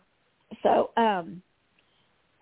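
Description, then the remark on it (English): A sharp cough followed right away by a rough, voiced throat clearing, then a brief pause before a voice starts again at the very end. “No, excuse me, I've been coughing.”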